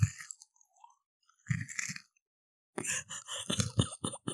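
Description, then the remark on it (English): Loud crunching of a Butterfinger candy bar being chewed, in bursts: a few crisp bites, a pause, then a rapid run of crackly chews. “Here's me crunching on a butterfinger.”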